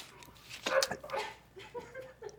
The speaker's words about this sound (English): Oh, that was a big sip.